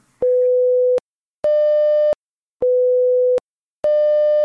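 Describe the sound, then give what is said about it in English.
The monthly test tone of the AMCON alert system: four loud, steady beeps of under a second each, alternating between a pure lower pitch and a slightly higher, buzzier one, separated by short silences. No voices. “Okay, this first one is what the AMCON monthly test would sound like, or anytime we need to test the system, which will be a minimum of once a month, will sound just like this.”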